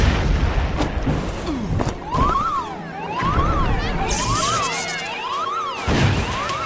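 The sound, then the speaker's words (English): Heavy booming explosions and crashing debris rumble through the main shuttle bay while a rising-and-falling electronic alarm wails repeatedly over the chaos; no voices are heard. “there's been an explosion in main shuttle bay.”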